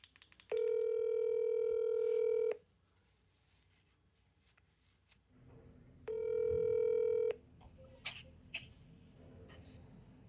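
A phone call rings out: two long, steady electronic ring tones with harmonic stacks, separated by a pause, followed by faint clicks and rustling as the line connects.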